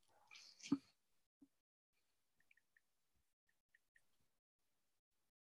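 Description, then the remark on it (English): A brief rustling thump, then a quiet, irregular series of short, high electronic beeps as a man presses keys on a calculator, doing math, with no talking. “I was like, I think he's typing the calculator.”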